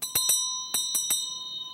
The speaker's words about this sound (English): And like many Western bells, it has a piece of metal inside that swings freely if you let it go. And that's a clapper that claps or hits against the bell and makes it ring.